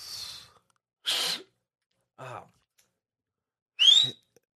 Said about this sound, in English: I'm gonna whistle without my two fingers in the mouth.